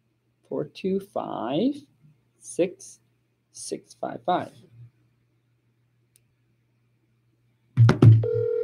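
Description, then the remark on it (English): A few bursts of muffled talking, a quiet pause, then a steady electronic telephone ringing tone starts near the end and holds, fairly loud, as a call is placed to a homeowner about a property for sale. “All right, I'm calling you.”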